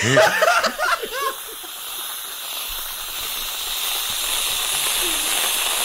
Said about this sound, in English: That is whipped cream at the end, if you couldn't tell.